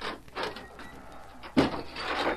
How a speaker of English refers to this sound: Me ready. Me open door.